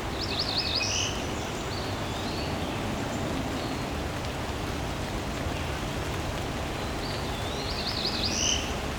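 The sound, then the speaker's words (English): A Cerulean Warbler's nasal, buzzy, rising song sounds twice, at the start and near the end, fairly faint over a steady wash of rain-like background noise. “This is my first time encountering this one. Cerulean Warbler.”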